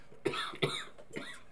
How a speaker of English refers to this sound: Are you done coughing yet?